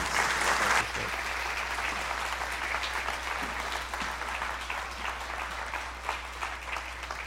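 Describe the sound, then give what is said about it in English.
An audience claps steadily for several seconds after a guest's talk about the Kirkwood School District mentoring program, a dense, even patter of many hands that starts strong and holds at a fairly constant level without any voices over it. “That's a pretty good welcome, because they don't clap after my sermons”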